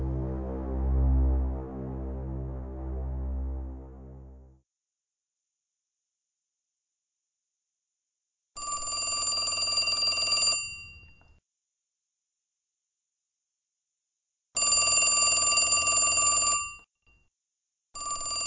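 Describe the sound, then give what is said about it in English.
A low droning hum fades out, then a loud, bright telephone bell rings in two-second bursts separated by silent pauses, three rings in all, the last cut off. “Oh, let it ring. Let it go on ringing. It's a trick of some kind. I won't answer it.”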